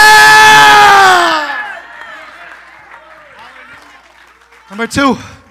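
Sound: audience screaming and cheering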